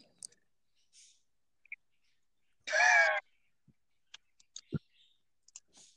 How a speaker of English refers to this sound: Feed your damn birds.